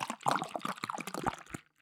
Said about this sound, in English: So I'm gonna do that. But I can crack with you if you've got something to crack. Yeah, I'll crack this on three. Now I'm pouring hard. Pour hard.